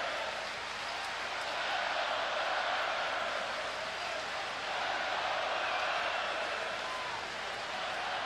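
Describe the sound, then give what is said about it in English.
A dense, steady roar of a basketball crowd on its feet cheering at Scotiabank Arena during a Toronto game against the Bulls, loud and continuous for the whole stretch, swelling slightly at moments with no distinct voices standing out. “Crowd on its feet at Scotiabank Arena.”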